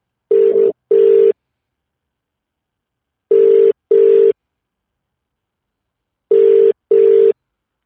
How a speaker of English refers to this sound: All right, I'm just going to call him. It's ringing.